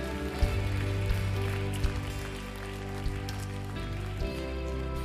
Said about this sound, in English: Hey, can we just give our God a big, big hand clap of praise one more time this morning?